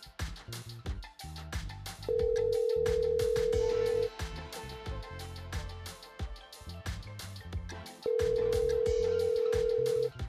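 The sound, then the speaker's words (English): An outgoing phone call from Denver to a man in Nashville rings back twice, each steady tone lasting about two seconds with a pause between, over continuous background music. “So give me a second, and I'm going to pull up his number and give him a call.”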